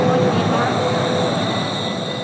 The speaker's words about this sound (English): This is a Valley Line train to 102nd Street.